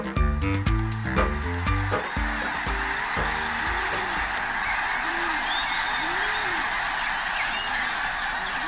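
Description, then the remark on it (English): A large flock of migrating birds honks and calls together, dense overlapping cries that are loud and choppy at first, then settle into a steady, continuous chorus with scattered calls rising above it. “The sound of winged dinosaurs during migration.”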